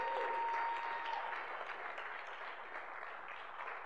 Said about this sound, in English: I want to wish my mom a happy anniversary today. She's watching online. Can we give my mom a round of applause?